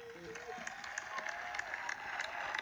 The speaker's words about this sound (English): Round of applause. Let me give you some round of applause.